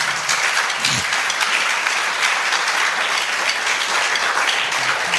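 A Christian audience applauds after a sermon in a steady, dense wash of clapping that stays loud and even for about five seconds, with a brief low vocal sound near the start.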